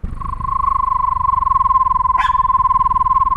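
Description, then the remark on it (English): A person imitates a screech owl with a steady, mid-pitched trilled whistle held for about three seconds, rapidly pulsing on one note, with a brief click near the end. “What does the screech of a screech owl sound like? Can you describe it?”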